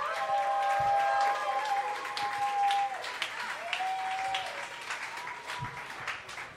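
An audience bursts into loud, sustained applause to pick a favorite contestant, a dense wash of clapping with scattered cheers and whistles rising above it before it gradually thins out.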